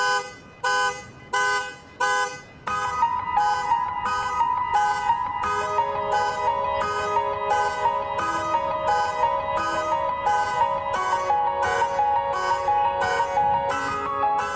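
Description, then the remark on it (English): Music played by a keyboard player mimicking a car alarm: choppy, honking bursts of repeated notes open the piece, then sustained chords swell beneath a steady, fast pulsing rhythm. Loud, with no talking. “this is a keyboard player, …, and he made the car alarm”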